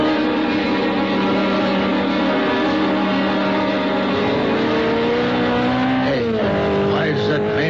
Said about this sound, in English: The sports car looked like a Simonetti. I couldn't tell. Went by me too fast. Must be doing close to 90 or 100. Heading west on Trumbull.